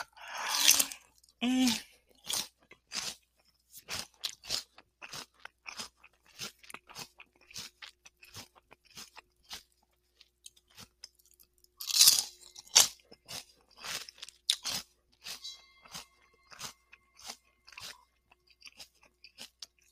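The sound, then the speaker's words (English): Crunching and chewing of a crunchy refrigerated food, a rapid series of sharp, crisp bites repeating steadily throughout, with a couple of louder, breathy bursts near the start and middle. “The funny thing is, this is one of my favorite summer foods, and because it's refrigerated, I was kind of shying away from it for the winter, but let me tell you, I could eat this, I guess, year round.”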